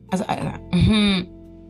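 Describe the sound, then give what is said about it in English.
A fairly loud throat clearing: a rough, scratchy burst followed by a longer voiced, rumbling clear lasting about half a second, then quiet. “I'm actually clearing my throat or like blowing my nose.”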